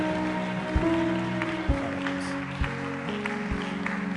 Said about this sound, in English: Just keep clapping for them. Just come right now. Oh, they are coming on all sides. Oh, keep clapping for them as they come.